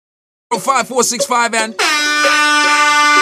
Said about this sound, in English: I'm gonna put some gas in your car, but you gotta honk your horn.